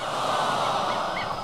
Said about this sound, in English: I'm Kiki the parrot. Pieces of eight, pieces of eight. Cackle, cackle.